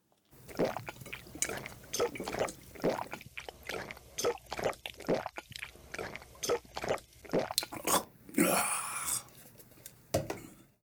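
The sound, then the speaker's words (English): Wet gulping as someone drinks a whole pitcher of water in a rapid, steady series of swallows, followed by a loud breathy rush of air and one last gulp. “Did you just pound that entire thing?”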